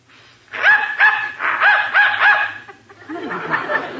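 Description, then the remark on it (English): A dog barks excitedly after a dog whistle, inaudible to humans, is blown. A quick run of about five sharp, yipping barks, a brief pause, then a few more barks. Fairly loud, with no talking. “Dog heard it, but I didn't.”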